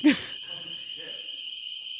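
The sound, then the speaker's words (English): A steady, high-pitched electronic alarm tone drones continuously without pause, opening with a brief vocal burst and faint murmuring voices underneath. “What happened? The ball alarm. Do we have to stop?”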